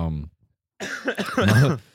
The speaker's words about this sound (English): I'm still a little bit sick. I just want to apologize. I'm going to be coughing for this one.